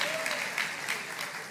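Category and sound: crowd, church audience applauding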